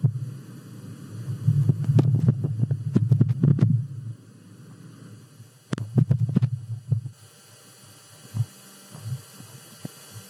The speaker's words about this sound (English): Well, now we have them, some of them at least, from 134,166,529 miles away. We present the sound of wind on Mars, courtesy of NASA.